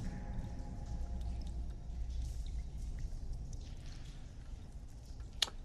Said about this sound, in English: and it is sitting in a vast and gigantic pond, pool, lake of bubbling, undulating slime.